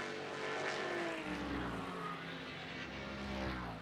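Powerful sports race car engines roar steadily at high revs, their droning tones shifting in pitch as cars pass along the Watkins Glen circuit during a 2022 WeatherTech SportsCar Championship race, loud and continuous with no talking.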